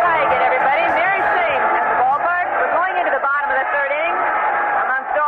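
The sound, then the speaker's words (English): A big baseball stadium crowd in 1977 cheers and roars while the Chicago White Sox trail 1-0, a dense wall of many overlapping voices holding loud and steady for several seconds with no single speaker standing out. “cheering, and the White Sox are trailing 1-0.”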